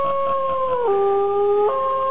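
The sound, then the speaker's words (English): A single long wolf howl, loud, holding a steady tone that dips lower midway and then jumps back up near the end, with no other sounds. “One way or another, hey, we got a Wolf Howe request.”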